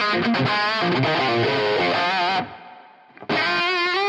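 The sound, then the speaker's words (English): A distorted electric guitar, played through a drive pedal, delay and reverb, plays sustained notes that wash into a long reverb tail, fading for about a second before the playing loudly resumes. No voices. “That's a long reverb.”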